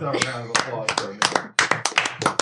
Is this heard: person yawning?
no